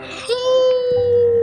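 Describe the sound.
A person imitates the howling of a woman's mangled face: one long, steady, moaning wail held at a fairly constant mid pitch for over a second, loud and tonal, with a brief rough onset.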